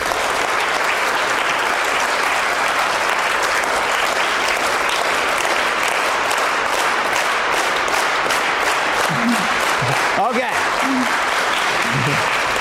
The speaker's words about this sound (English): And I'm not going to say how to clap together or what, but I want you to synchronize your clapping. Okay, let's just clap.